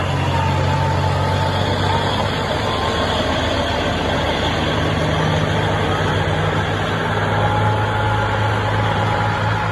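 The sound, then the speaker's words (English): A truck engine rumbles steadily, a heavy low drone with a constant hum that holds level throughout, with no voices present. “Can you hear that? It's just a truck making noise.”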